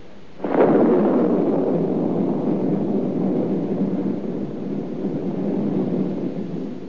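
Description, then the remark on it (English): A sudden crack of thunder from the last of a passing storm in spring breaks out, then rolls into a long, heavy rumble that stays loud and sustained for several seconds with no voices. “That's just the old storm having a last blow.”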